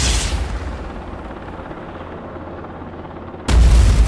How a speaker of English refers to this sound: The helicopter exploded into a huge fireball.